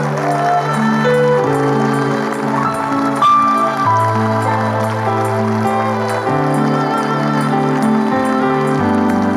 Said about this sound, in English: Believe. That's why you're clapping. Believe that you've received. That's why you're clapping. Clap louder.